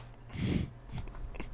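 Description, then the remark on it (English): A short, breathy blown raspberry made with the mouth, a quick voiced imitation of a fart lasting under a second, mimicking a Skyrim mod that turns every shout into a fart, followed by a faint puff and soft mouth noises. “The best mod I ever put into my copy of Skyrim was the one that made it so whenever you did a shout, it just was a fart. Just a quick...”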